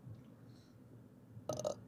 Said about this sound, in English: Excuse the burp, everybody. I just burped in ears.